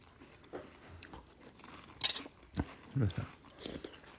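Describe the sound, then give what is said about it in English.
Crunching of someone chewing a spoonful of crunchy cereal while tasting it, with a series of irregular crisp bites and wet mouth sounds, fairly quiet. “It's just like you're eating nothing. You're eating crunchy milk.”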